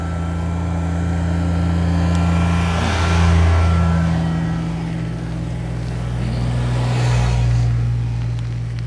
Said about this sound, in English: We got some tractor traffic coming up. We got them on both sides.